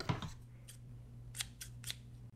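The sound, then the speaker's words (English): A pair of scissors snips and clicks, a few quick metallic cuts spaced apart over a low steady hum, with no one talking. “We have the same scissors. We've got the same brand.”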